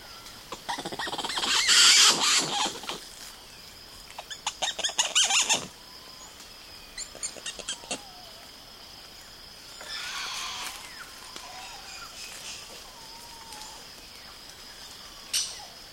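Woolly spider monkeys, a group living near the Caratinga Biological Station in the Atlantic Forest of Brazil, give high, squealing calls in bursts, some chattering and rapid, others thin and drawn out, over a steady hum of rainforest insects; a day of their calls recorded and condensed by Douglas Quinn.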